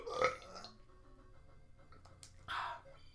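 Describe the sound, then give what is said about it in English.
A short, gurgling burp made on command bursts out, followed by a quieter stretch and a second throaty rumble near the end, with no talking. “I can burp on command.”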